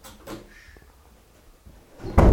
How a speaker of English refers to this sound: Oh, that's good dog for shutting the door behind you.